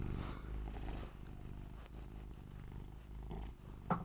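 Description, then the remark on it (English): A cat named Loki purrs steadily, a soft, continuous low rumble with a gentle rhythmic pulse throughout, plus a brief faint rustle near the end. “We've gotten interrupted by a child, so listen to beautiful Loki as he purrs.”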